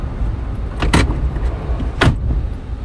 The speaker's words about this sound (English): Hey, open and close your door, it's open.